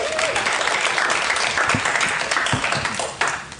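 An audience claps steadily for a man called up to the stage before a guided meditation, a dense, even wash of many hands with no voices standing out, fading slightly toward the end.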